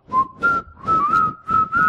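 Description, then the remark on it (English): Someone whistles the tune "A-Hunting We Will Go", a short, bouncy melody: a string of clear notes in a steady rhythm with brief gaps, fairly loud, with no talking. “Isn't that what, what's his name on The Wire used to whistle them?”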